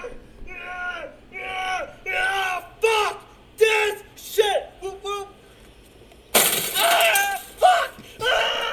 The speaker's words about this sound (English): So he smashes into fluorescent tubes that were suspended by two chairs. There was a printer in the middle of it.